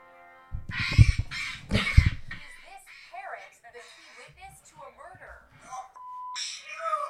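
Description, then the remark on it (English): A parrot imitates a man's voice, belting out the shouted phrase "don't shoot" in two loud bursts, then continues with squawky, speech-like chatter and a brief steady beep near the end. “So that was the parrot saying don't shoot.”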